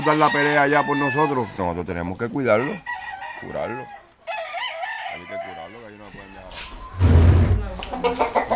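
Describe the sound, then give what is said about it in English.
Fighting roosters kept in a family's backyard crow again and again, their loud calls overlapping, with scattered clucking between the crows and a burst of rougher farmyard noise near the end. “If the roosters have injuries from their fights, they tend to their wounds.”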